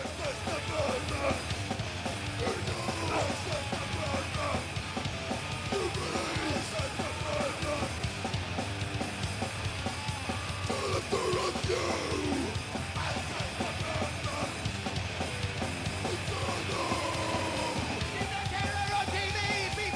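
A loud, dense live band performance at the 1992 Brit Awards, with harsh shouted vocals over pounding, distorted instruments, roaring continuously for the full twenty seconds without a break.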